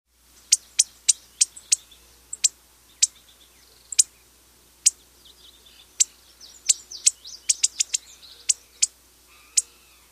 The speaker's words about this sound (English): The lazuli bunting call is a sharp metallic pink.